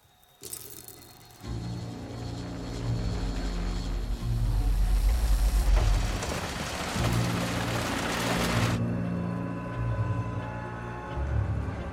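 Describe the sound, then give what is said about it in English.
Steady rain hisses over city streets, with a deep continuous rumble underneath that swells midway and eases off, no voices, the downpour holding fairly loud throughout. “Even with the rain.”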